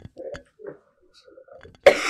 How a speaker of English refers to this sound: Sorry, I'm going to, like, cough really. There's a tickle in my throat that won't leave.